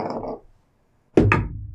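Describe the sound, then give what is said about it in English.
A d20 die tumbles onto a tabletop: two quick, hollow thunks in rapid succession, then a short, low rattle as it settles, following a moment of silence. “Okay, roll a d20.”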